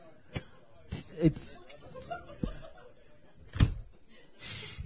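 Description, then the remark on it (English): A book knocked over in anger falls and thuds onto a hard surface. Several sharp knocks and bumps ring out, with quiet laughter and voices in the background. “has knocked his book over in anger. It fell on its”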